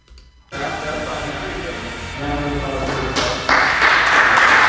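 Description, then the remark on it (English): Audience applause starts abruptly and swells into dense, steady clapping that grows louder toward the end, with a murmur of crowd voices underneath. “Oh, don't clap. That, don't clap.”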